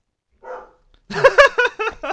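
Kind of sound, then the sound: animal, dog barking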